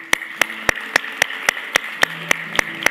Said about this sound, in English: Let's applaud this day.